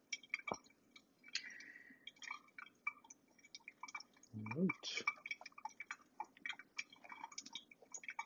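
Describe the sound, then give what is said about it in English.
Hot water is poured slowly over coffee grounds in a flatbed brewer, the last 100 grams poured at one minute 30 seconds to reach 300 grams. It drips through a filter in a steady patter of small irregular drips and trickles, broken briefly midway by a short low murmur. “And at the minute and 30 seconds, I'm going to pour my last 100 grams to hit my 300 grams.”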